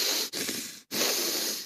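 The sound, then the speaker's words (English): A voice imitates a man's loud, heavy breathing during meditation: a short breathy hiss, then a long airy exhale, a brief pause, and another long rushing breath, all noisy and forceful with no words. “So he was breathing very, very loudly.”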